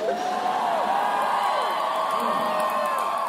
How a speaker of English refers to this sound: I love that diarrhea gets an applause